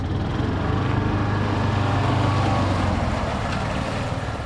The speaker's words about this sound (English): Gibson's convoy heads into the park. In addition to the spray trucks, the entourage also includes a three-wheeled, all-terrain vehicle.